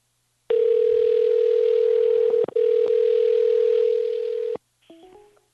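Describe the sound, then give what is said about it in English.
A call-disconnect signal after a Google Hangouts call cut off at about an hour: a loud, steady electronic tone drones for about four seconds with a brief break, then a few quieter, short stepped beeps follow. No voices. “Hey, I'm not sure what happened, but yeah, the phone just went dead.”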